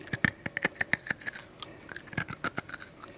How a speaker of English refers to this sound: Oh, let's crunch the ice into the microphone. Honestly, it sounded pretty cool. I like the glass sound.